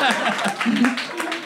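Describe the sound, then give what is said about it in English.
A burst of audience applause, dense, steady clapping with sharp individual claps and cheering voices mixed in, holding at a fairly loud level for just over a second and a half. “A round of applause!”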